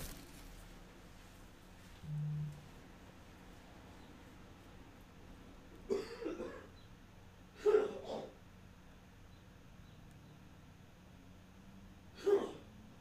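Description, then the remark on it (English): A few short, harsh bursts of throat clearing and coughing, spaced several seconds apart, against an otherwise quiet background with no talking. “I have to go clear my throat, you guys.”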